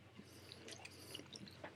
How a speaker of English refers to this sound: You don't chew on the mic. I'm not. I was for a second.